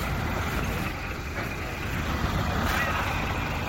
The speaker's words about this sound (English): Anyhow, they turn up in this monster recovery truck. Huge, great thing. And they start attaching winches and stuff like that, like this. I did tape some of it. Here's the monster recovery truck.